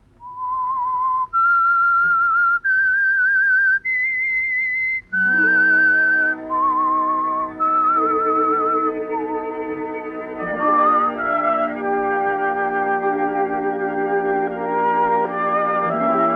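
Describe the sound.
A whistled theme tune for The Whistler radio show rises through several clear sustained notes, then continues over an orchestral accompaniment with held, swelling chords, loud and steady throughout with no talking.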